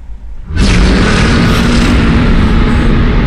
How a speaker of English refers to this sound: Just as I'm pushing myself onto my hands and knees, the thing emits a bass-filled howl.